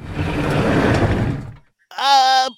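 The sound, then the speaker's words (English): A garage door rumbles shut with a steady, grinding mechanical noise for about a second and a half, then stops; after a brief pause a person's voice speaks. “you're closing, your garage door is closing.”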